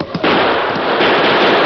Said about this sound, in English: I'm shooting at the ceiling of that tunnel. Let those rats dodge a hail of chipped stone.